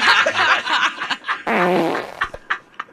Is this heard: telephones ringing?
no